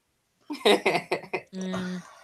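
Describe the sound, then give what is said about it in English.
A loud run of about five heavy coughs in quick succession, followed by a brief sustained voiced groan. “You know, I don't hate Valentine as much as I feel like I should, but I'm literally coughing my lungs up.”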